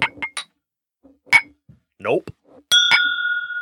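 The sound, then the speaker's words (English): Glasses clink together in a toast several times in quick, scattered taps, the last strike ringing out with a clear sustained tone; a short voiced sound is heard between clinks. “And to you, we say, May your glasses be full and your spirits high. Cheers.”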